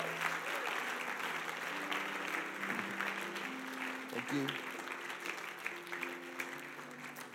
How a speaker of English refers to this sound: Come on, let's give God a big clap and thank him.